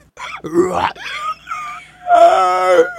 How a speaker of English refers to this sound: He got out of the car to change the tire, but the terrifying creature emerged from the woods and tried to attack him, screeching and screaming.